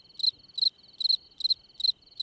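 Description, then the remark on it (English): A cricket sound effect: crickets chirp in a steady, regular pulse, about six bright trilling bursts over a continuous high buzz, with nothing else in the background and no voices. “That was the sound effect of crickets.”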